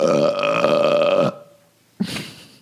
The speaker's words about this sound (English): I mean, I really feel like it's overkill today. It's too many burps.